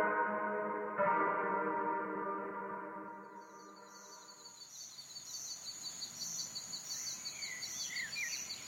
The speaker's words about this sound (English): You walk into the woods. What do you hear? Frogs and crickets are singing, but you don't see them. They are just a part of the forest as an abstract. An idea.